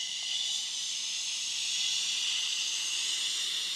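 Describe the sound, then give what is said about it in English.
During a breathing exercise, a steady, unbroken hissing "shh" exhale carries on for about four seconds at an even, moderate level, bright and airy, with no talking over it. “Just like the rib exercises, these can be done on shh, on a hiss, or through straws.”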